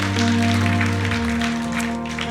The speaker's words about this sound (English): Come on, clap your hands.